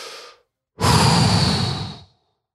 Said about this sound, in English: So keep breathing. Do it with me. Come on.